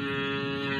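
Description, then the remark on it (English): A cow on a farm moos in one steady, drawn-out low call that fills the moment, moderately loud, with no talking over it. “That was not Emmanuel. That was a cow on the farm.”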